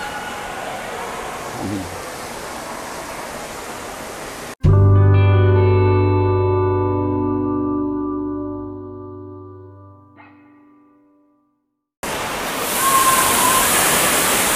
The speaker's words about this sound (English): That's a big splash that comes down. You know, they've got this huge bucket, and the kids all lie down on the ground, and the bucket slowly fills up, and then it turns over and drowns them all.